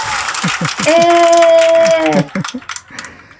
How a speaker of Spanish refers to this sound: Aplausos.